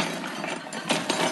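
Keys are set down on a surface, giving two quick metallic clinks and a light rattle over a steady hiss. No one speaks.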